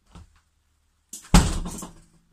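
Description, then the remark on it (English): A door swings and slams shut as a man marches out of a room, with a single heavy bang that rings out and fades over about a second, preceded by a faint shuffle. No one speaks. “The door slams behind him.”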